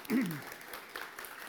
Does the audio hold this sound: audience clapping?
yes